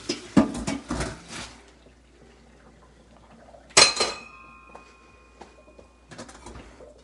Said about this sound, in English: But I'm going to strain the pasta here. So let's bring the camera over to the sink here. And it's already boiled. The directions was 8 to 9 minutes boiling. So I'm just going to drain so you can check it out. Drain the pasta.